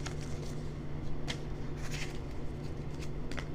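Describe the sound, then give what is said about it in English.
Rustling and crinkling of a paper note being handled and unfolded, with several crisp bursts over a steady low hum and no voices. “Yo, this paper's so dope.”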